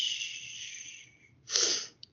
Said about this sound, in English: But, gosh. I'm still, like, coughing up stuff from laughing so hard. Excuse me.